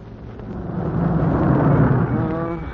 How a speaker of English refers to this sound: Yeah, from the sound of the firing, the Jerry's are pounding that sector. So wherever they're pounding is wherever the war is.